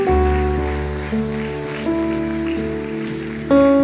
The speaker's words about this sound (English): Clap for them as they go. Bata as palmas para eles.